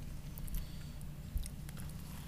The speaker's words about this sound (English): You get a big chomp in that mic for you. Mm-hmm. Let me get the rest of this taco down.